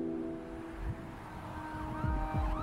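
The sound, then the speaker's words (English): An ambulance siren wails steadily with rising and falling tones, fairly loud, layered over low traffic rumble with no voices, as the ambulance rushes a critically wounded woman to hospital. “Quay and her husband Yuri follow the ambulance.”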